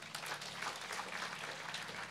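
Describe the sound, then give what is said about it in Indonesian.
An audience claps for God together in a dense, steady burst of applause that holds at an even, moderate level for about two seconds, with no voices heard over it. “Boleh tepuk tangan bagi Tuhan.”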